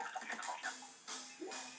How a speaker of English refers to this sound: Okay. I fell inside the green water.